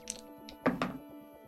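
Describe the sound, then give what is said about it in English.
Six-sided dice (d6s) rolled onto a hard surface for a combat attack roll in a game, landing on a total of 9: a couple of light clicks, then two louder clattering thunks as they land and settle, with no talking. “Yet again, we're going to roll our d6s and see what happens.”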